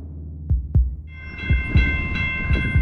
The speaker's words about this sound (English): But every single time you hear that train, you really get a sense of just how present those trains are, how close they are. It's not something that you can escape. Every time I saw the train like this running behind my building, I feel scared now.